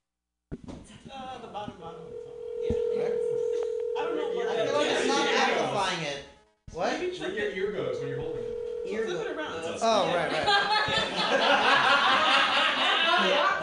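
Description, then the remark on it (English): A steady, droning telephone dial tone holds for a few seconds as a phone call is placed, cuts out, then returns briefly, with excited voices and laughter talking loudly over it throughout. “Who's the one with Seth Rogen's phone number, all right?”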